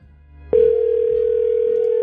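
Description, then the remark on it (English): A telephone ringback tone on an outgoing call: after a brief low hum, a loud, steady electronic tone starts and holds unbroken to the end, with no one speaking. “I'm hearing it. Yeah, so that's we good. Got a ring.”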